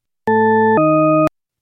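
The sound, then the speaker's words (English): Two steady, buzzy electronic tones play back to back as a pair in a listening test of whether pitch goes up or down, each about half a second long, with an abrupt shift in pitch from the first to the second and no pause between them. “So here are a set of paired tones. All we need to do is tell if they're going up or down in pitch.”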